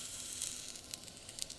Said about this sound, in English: So now we're going to put the veggie burger into the pan. Let's see what kind of sound it makes. Oh, there's a little bit of sizzle, but not much. Yeah, I think the sizzle is just like, because it's maybe a little icy from the freezer.